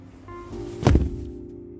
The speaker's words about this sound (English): Yeah, and you know that Leon's power is to stomp his slippers whenever there's an enemy like this.